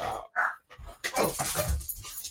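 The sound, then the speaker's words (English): A dog held by a person pants in quick, breathy bursts, the rhythm uneven with short pauses between huffs and no talking. “I'm going to have to put the dog down.”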